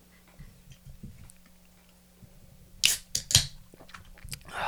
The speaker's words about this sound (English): Become the new podcast ritual. Cracking one open.